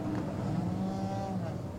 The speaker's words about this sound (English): motorcycles, the police motorcycles move off, this is very nicely done. The green flag, the warm-up lap, if you will, for the first round of the Japanese Super GT.